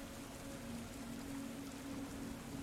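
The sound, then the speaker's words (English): A soft, steady hiss of light misty drizzle falls continuously over an ancient, empty ringfort in the eastern highlands, trickling down its walls, with a faint low hum running beneath it and no voices present. “The image is colored by the near constant misty drizzle that showers the eastern highlands.”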